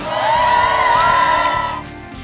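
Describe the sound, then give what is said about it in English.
A large outdoor crowd on a plaza on a Friday morning at 8 o'clock cheers and whoops loudly, with a sustained high whoop rising above the roar before the noise tapers off near the end. “Friday morning, we have a fantastic crowd out there.”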